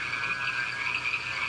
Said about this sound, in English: I looked out the backyard of where we were staying, and there were frogs on top of frogs on top of frogs. And I want to play you the sounds of the frogs in St. George, Utah. Now, this is a very subtle mating dance.